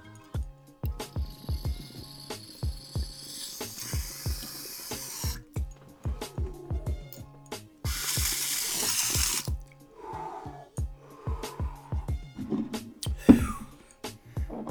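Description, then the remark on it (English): Water bubbles and drips steadily in a smoking rig, dripping back down into a little bucket: a rapid run of gurgling pops with two stretches of rushing, hissy flow partway through. No one speaks. “keeps dripping back down into this little bucket to keep giving you a nice hit”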